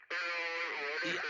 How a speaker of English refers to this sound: I'm sorry, I'm getting static on the line. I'm having a hard time reading and decoding your words